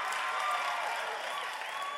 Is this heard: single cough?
no